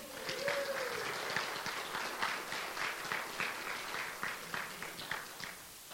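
A crowd applauds with steady, dense hand clapping that holds at an even level for several seconds, a brief tonal sound sliding briefly near the start.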